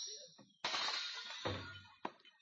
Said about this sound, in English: Yeah, I got it written down here on this tablecloth. I'll just have to take it. Oh, no, don't pull that tablecloth. You'll smash all those dishes.